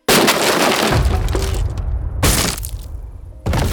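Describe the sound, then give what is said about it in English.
An upstairs window shatters in a loud, bright crash, followed by scattered tinkling shards and two more sharp bursts of breaking glass. No one speaks. “An upstairs window shattered.”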